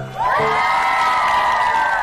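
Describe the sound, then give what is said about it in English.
Children of the Penzance Primary School Choir cheer and squeal together in a sustained, high-pitched shout, loud, holding steady for about two seconds. “Give yourself a big cheer!”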